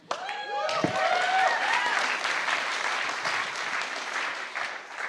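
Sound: audience applause and cheering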